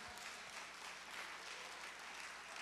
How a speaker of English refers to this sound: There are times you got to command your body to praise. You got to command your hands to clap. Come on, command your hands to clap right now.